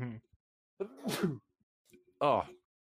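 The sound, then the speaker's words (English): A single loud sneeze bursts out with a sharp breathy blast, framed by short snatches of a man's voice just before and after it. “please excuse that horrendous sneeze.”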